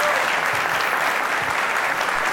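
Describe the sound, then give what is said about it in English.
Steady, dense audience applause for author Esmeralda Santiago's presentation at the Leslie Phillips Theater, Holyoke Community College, a loud even wash of many hands clapping with no pauses or voices breaking through. “Save some of the applause just in case it's not as good as you expect.”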